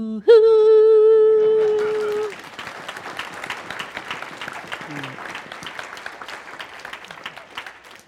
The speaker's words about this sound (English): Keep clapping, I have like 45 more minutes.